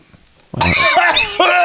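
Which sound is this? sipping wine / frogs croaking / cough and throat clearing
cough and throat clearing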